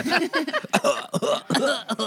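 A close, loud series of raspy coughs and throat-clearing bursts, several in quick succession over a couple of seconds with short gaps between them.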